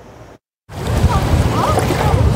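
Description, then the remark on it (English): Canoe races hosted by the Musqueam Nation on the Fraser River in Vancouver: a steady, loud rush of water and wind with splashing paddles, starting abruptly after a brief moment of silence, with faint voices mixed into the noise. “The Musqueam Nation hosting canoe races in front of their community for the first time in more than 30 years, bringing together First Nations people from across Coast Salish territory.”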